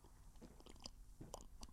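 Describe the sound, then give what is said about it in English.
Quiet wet mouth noises of someone drinking: a string of short clicky gulps and swallows spread irregularly over a couple of seconds, with no talking. “Well, that's a weird drinking noise.”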